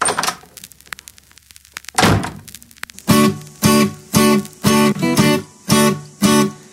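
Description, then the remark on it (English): A door shuts with a single solid thud after some faint clicking and shuffling as a person goes out, and then a bouncy, rhythmic song begins with evenly spaced beats. “And I promise to go this time. Out the door.”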